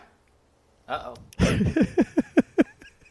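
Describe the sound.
A short spoken exclamation, then a sudden loud, breathy sneeze, followed by a quick run of five short, evenly spaced voiced bursts.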